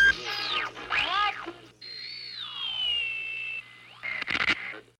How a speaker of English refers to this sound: Shh! Listen. There's a voice hidden in the static.